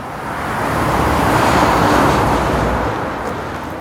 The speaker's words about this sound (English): Right, we're on a very busy road all of a sudden. He said about going under the railway, didn't he? So we're now walking by a very busy road, to be honest.